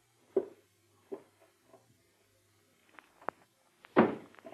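Muffled, heavy footsteps thud at a slow, steady pace, as if from a floor above, fading briefly before a few sharper knocks and a louder closing thump near the end.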